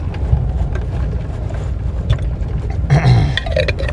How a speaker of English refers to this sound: So let me take another sip of my coffee here.